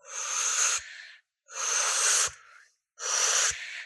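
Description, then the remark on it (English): Three long, hissy inhales drawn through pursed lips like sipping through a straw, each lasting about a second with a short pause between, fairly loud and breathy with no talking. “Now, the next part of this is we're going to do a breath, but we're going to do it like we're sipping through a straw.”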